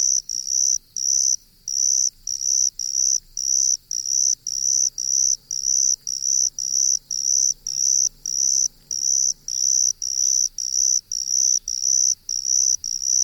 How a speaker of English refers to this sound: It was the botanist Willis Blatchley who found it in leaf litter and mistook it for the more widespread Carolina cricket. Lang Elliott and Will Hirschberger recorded these trills for their CD, ….